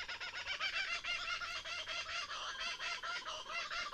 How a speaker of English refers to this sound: Now that sound there tells us where we are. That's the kookaburra bird, the iconic voice of Australia.